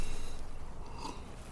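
A soft sip of beer, a brief wet slurp and swallow with faint mouth noises, heard alone without any talking for just over a second.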